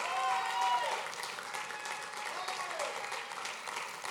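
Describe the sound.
A room full of people clapping steadily for people coming to the front to pray, a dense, sustained round of applause that stays fairly even throughout, with some faint voices mixed in beneath the clapping.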